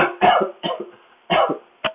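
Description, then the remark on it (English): A few harsh coughs in quick succession, loud bursts with short gaps between them, ending with a brief, clipped final cough; no talking. “I don't mind if you cough or you feel weird as well.”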